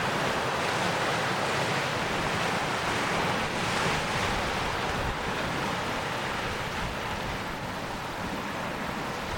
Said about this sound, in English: The water's a bit murky, but it's a great spot here. Just get a lovely, soothing, the soothing sound of the sea here.